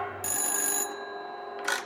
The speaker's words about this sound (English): you hear the phone ringing upstairs